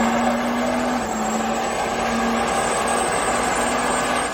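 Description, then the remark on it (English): A pickup truck engine rumbles with a steady, loud drone and a faint wavering hum that barely changes in level, with no voices. “There it is. That big old redneck mobile. Look at that thing.”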